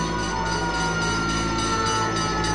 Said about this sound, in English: Fire trucks screaming up and down the streets. Chicagoans look on, powerless, as more than 30 fires, intentionally set by mobs, ravage the South Side.